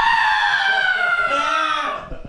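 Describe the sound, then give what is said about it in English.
A voice imitates the whistle of a Piccolo Pete screaming firework: one loud, shrill, sustained tone lasting about two seconds, its pitch sliding slowly downward before trailing off. “I use a Piccolo Pete, which is one of the screaming fireworks.”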